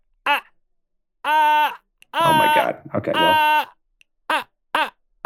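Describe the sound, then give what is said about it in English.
A human voice imitates Morse code SOS, singing sustained harmonic tones in a pattern of short and long bursts separated by brief pauses, with no words spoken. “That's an SOS. Excellent. Created by yours truly in Morse code, in raw human voice.”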